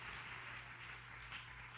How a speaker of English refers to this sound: Let's clap our hands to that one.